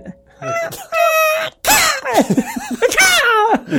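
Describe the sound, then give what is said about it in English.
A person imitates a bird sneezing with a series of loud, high-pitched squeaky vocal bursts, rising and falling like shrill wails, followed by more warbling, laugh-like squeals. “How does a bird sneeze?”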